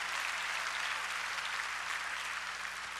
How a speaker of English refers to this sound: If you believe that, clap your hands and give God praise.